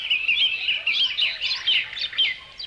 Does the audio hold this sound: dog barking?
no